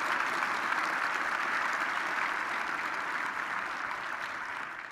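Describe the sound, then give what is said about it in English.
Steady applause from an audience in the Bill James Room fills the whole clip, a dense patter of many hands clapping at an even level that eases off slightly toward the end. No one speaks. “And thank you for that applause.”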